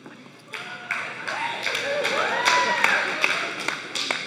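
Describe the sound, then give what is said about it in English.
Scattered, uneven claps from an audience, a modest patter of hands rather than full applause, with a few sharp individual claps standing out over a low murmur of voices. “That was claps of fear.”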